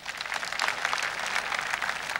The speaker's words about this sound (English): Let us clap for them.